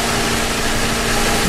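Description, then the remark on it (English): A traffic helicopter's engine is started and warmed up, running with a loud, steady droning whine and rumble, unchanging for the whole moment, with no voices over it. “He left the key to the copter. That was good. There we go. Warm it up. Prime the pump.”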